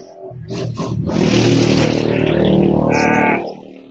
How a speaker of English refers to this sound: Somebody has a motorcycle. Yeah. Man, they love that motorcycle. They like to be loud. Here's the thing. I got a motorcycle license. You don't have to be that loud.